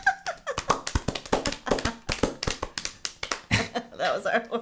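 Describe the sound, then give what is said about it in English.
Someone imitates horse hooves clip-clopping with a quick, steady run of sharp taps and clicks, a rhythmic clatter lasting a few seconds with some vocal sounds mixed in. “We do the clippity clip.”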